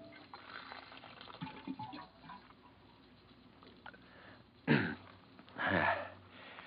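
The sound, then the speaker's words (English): After a quiet, murky stretch, water gushes from an office water cooler as someone gets a drink, in two short bursts, the second a bit longer with a bubbling gurgle. “Hang up your hat and go over to the water cooler for a drink.”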